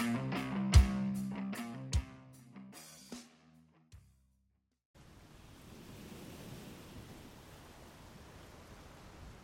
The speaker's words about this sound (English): It was an autumn evening, and it was cold. The brutal western wind battered anything that stood in its way. The rain was practically horizontal